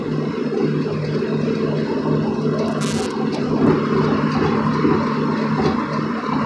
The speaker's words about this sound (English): I wonder how loud this shit's gonna be in the car, though. Like, always cringe when I'm on the highway and I'm recording the show. I know it's probably loud as fuck, even on the headset.